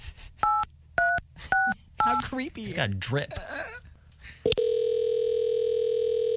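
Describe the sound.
Several short touch-tone dialing beeps sound in a quick series as a caller from a security company phones a customer, people talk briefly over more tones, then a loud steady ringing tone comes in and holds to the end.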